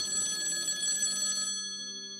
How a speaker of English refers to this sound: Listeners, that's my emergency Lurking Studios phone. I have to answer it.